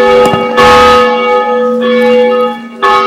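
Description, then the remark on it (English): Church bells of Groveport United ring out loudly, struck again every second or so, each strike sustaining a rich, humming tone that overlaps the next. No voices are heard. “Whether the bells ring or not.”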